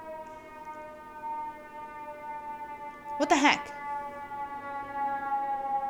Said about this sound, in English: I wonder if you guys can hear the siren. She's close.